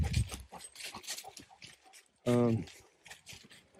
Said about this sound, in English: I'm out of breath.